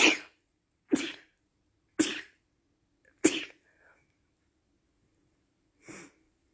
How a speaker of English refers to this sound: Ooh, all right. Those were sneezes. Sorry about that. Ooh, I think that's the first time I've ever sneezed on the podcast.